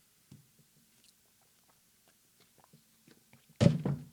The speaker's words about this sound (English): Let me take a sip of water before I talk about draft.